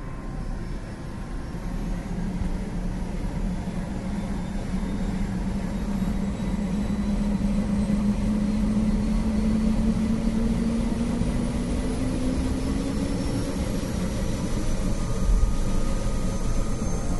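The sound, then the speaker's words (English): A yellow helicopter takes off from a granite helipad at a camp on the ice, swaying slightly, its steady, loud engine roar and rotor drone filling the whole stretch, with a low whine that slowly climbs in pitch as it powers up. No voices. “The helicopter takes off from the granite helipad, swaying slightly.”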